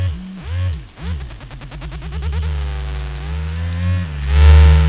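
A strong Satisfyer Pro vibrator buzzes with a low, rough hum, first warbling and pulsing rapidly, then settling into a steady drone before swelling louder at the end. No one speaks.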